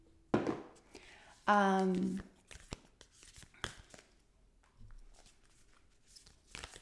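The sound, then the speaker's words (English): A deck of cards being shuffled: soft, intermittent flicks and riffling snaps spread over several seconds, with a short hummed vocal sound near the start. “Shuffling up the cards.”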